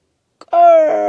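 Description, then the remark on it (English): A voice imitates a creaking door opening: a short click, then a loud, sustained, strained tone that slowly sags in pitch for under a second, with no speech. “That's the door noise.”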